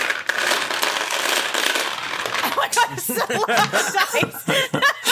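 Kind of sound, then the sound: dice rattling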